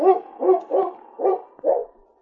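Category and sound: animal, dog barking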